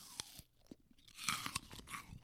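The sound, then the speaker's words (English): Loud crunching as someone bites into a crisp, fresh apple, with several sharp snaps followed by wet chewing in an irregular rhythm. No talking. “Listen to this crunch.”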